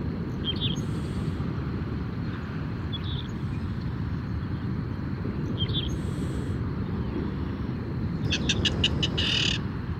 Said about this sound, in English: Did you hear that? It was a clapper rail. It's a very secretive marsh bird, like the soar we heard in Yellowstone. Clapper rails live most of their lives on the ground, running through the cord grass, staying well out of sight.